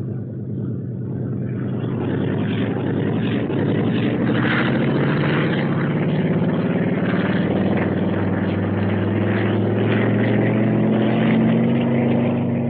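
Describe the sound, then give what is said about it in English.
A propeller plane's engine roars steadily as a test pilot takes off and climbs straight up, a loud, sustained drone with a rising rumble and buzzing harmonics, with no voices. “Wow, look at that guy take off.”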